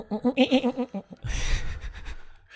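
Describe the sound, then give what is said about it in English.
A person imitates a goat, letting out a loud, wavering bleat made of about seven quick quivering pulses, followed by a rough, breathy burst of noise. “Do the goat thing.”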